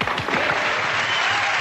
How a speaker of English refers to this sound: Okay, cue the clap now.